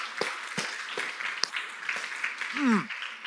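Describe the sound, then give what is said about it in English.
Scattered clapping from a crowd applauding the production team, a few sharp claps standing out over a steady wash of applause, with a brief voice-like tone rising near the end. “First, can we just give them an applause really quick?”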